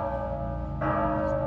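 Church bells ringing out steadily at 8 a.m. in an open town square in Mexico, their sustained metallic tones layered and resonant, with a fresh strike swelling the sound partway through. No voices are heard.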